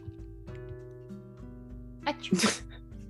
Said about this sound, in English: Oh, I need to sneeze again.